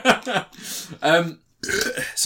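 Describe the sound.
A loud, drawn-out burp rumbles amid bursts of people talking, with a brief pause before speech resumes.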